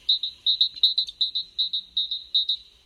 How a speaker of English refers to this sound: So Manda's got another recording of the red-winged blackbird playing right now, which comes from a different part of the world.